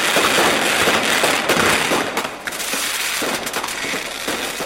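Fireworks crackle and pop in a dense, continuous barrage, loud, with rapid overlapping bursts and no talking.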